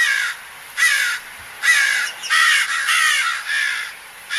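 A crow caws repeatedly in harsh, raspy bursts, about five or six calls in a steady rhythm, loud, with no talking over it.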